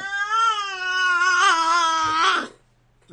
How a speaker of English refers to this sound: Is that Captain making all of that meowing? Yes. Hi, Captain! He's mad.